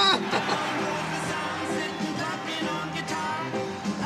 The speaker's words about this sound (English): Those are just the studio recordings with massively overdubbed applause. And if you find it on Spotify now, which you can, it says with overdubbed applause to make it plain to you what was going on.